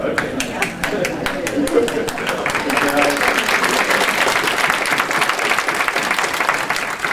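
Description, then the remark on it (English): An audience applauds steadily for several seconds, a dense patter of many hands clapping at once, with some murmuring voices mixed in underneath. “That's not worth a hand clap.”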